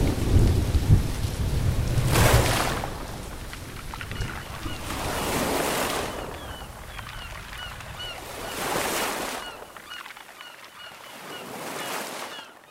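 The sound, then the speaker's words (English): A raging thunderstorm with steady heavy rain and wind, broken by several loud surging bursts every few seconds and a deep low rumble near the start. No voices. “Before long, it caught a glimpse of the same schooner spotted earlier this evening, and the watchers of the storm shuddered at the danger she was now in.”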